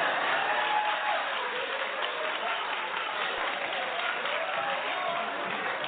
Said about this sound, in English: Although the audience applauded, many viewers at home ran to social media to criticize the talk show host's comments.